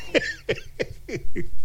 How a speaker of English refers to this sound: She says, thank you, in a very quiet, like, coughing voice.